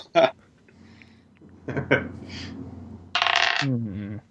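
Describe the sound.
Dice clatter and rattle across a hard table surface in a few short bursts, ending in a busier rolling rattle, fairly loud, with a voice starting to talk just afterward.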